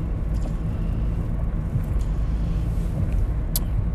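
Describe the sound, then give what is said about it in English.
Steady low engine and road rumble from inside a moving car being driven to work, a constant droning hum with faint high ticks and clicks over it, no one talking. “Enjoy the ambient sounds of the car.”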